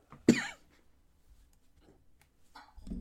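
A single sharp, harsh cough bursts out, followed by near silence and a few faint rustles and breathy sounds toward the end.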